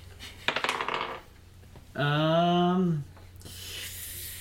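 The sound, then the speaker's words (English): A short, bright clatter of dice tumbling across a hard tabletop for about a second, rolled for a vehicle handling check in a tabletop game, followed by a sustained hummed voice and faint background rustle. “What do I roll for vehicle handling?”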